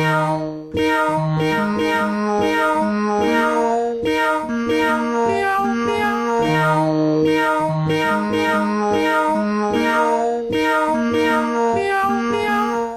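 Deep cat meows pitched down an octave follow one another without pause, loud, their stretched tones stepping up and down like a slow melody, with no talking.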